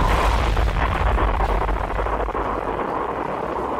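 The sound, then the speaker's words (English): The Watson Grinding and Manufacturing Facility, an industrial warehouse next to a residential neighborhood in the Houston area, explodes around 4 in the morning, captured on a home security camera: a loud, sustained roar of deep rumbling and crackling noise that fills about four seconds without letting up, with no voices. “An industrial warehouse right next to this residential neighborhood explodes.”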